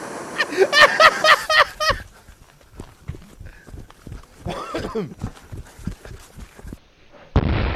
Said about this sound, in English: So, if you shouldn't duct tape a firework to one can of paint, then you definitely should not duct tape a firework to two cans of paint. Because this could happen.